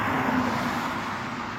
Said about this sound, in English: It's obviously of a street. You can hear cars going by.